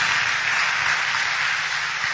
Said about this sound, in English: Stand to your feet and clap for Jesus. Clap for Jesus. Clap for Jesus. You're clapping for Jesus.